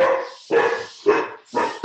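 A dog barks four times in a steady rhythm, loud, each bark short and sharp with a brief pause between, no one talking.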